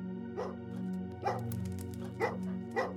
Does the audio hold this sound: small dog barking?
yes